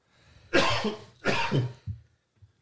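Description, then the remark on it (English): Two harsh, forceful coughs, followed by a couple of weaker, shorter coughing sounds as the fit dies down. No one speaks. “I'm coughing. I'm dying.”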